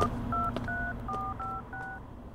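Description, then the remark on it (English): Six quick two-tone beeps from a telephone keypad being dialed, evenly spaced with short pauses between them, heard clearly over a low background hum. “I need to make a phone call.”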